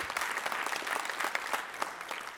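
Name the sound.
audience clapping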